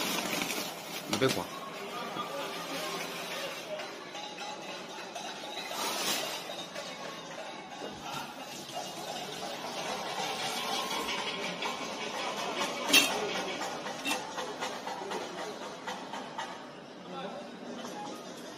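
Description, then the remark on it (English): Irregular metallic clanging of pots and pans being banged by residents of a Shanghai neighborhood during the Shanghai lockdown, in response to government officials, with a few sharper, louder strikes standing out over a steady clatter and a murmur of many voices; people also shout things like 'we need supplies'. “And so as a response, when people noticed that there were Shanghai officials down there, they started to bang pots and pans. You can hear in the background.”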